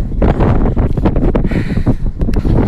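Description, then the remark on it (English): Strong wind roars and buffets the microphone at a mountain summit fire tower in a loud, continuous rumble with uneven gusts, heavy in the low end, and no voices. “It's pretty windy, but I can just see this long stretch of lakes out in front of me.”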